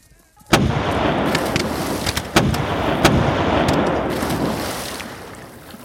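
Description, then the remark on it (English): Booming cannon fire with a sudden heavy blast followed by several more sharp explosions, a rushing, roaring wash of noise filling the gaps between impacts. Californio grapeshot and shells from the defenders of Los Angeles fall on American troops crossing a 300-foot-wide river in the late afternoon, sending river water cascading over them. “Californio grapeshot and shells descend on the Americans' front lines, sending river water cascading over the troops.”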